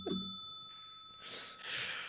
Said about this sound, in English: Ring the bell! Ring the bell!